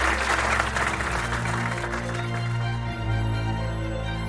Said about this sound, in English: So let's give a round of applause to John Finger.